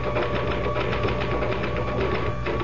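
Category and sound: machine, typewriter typing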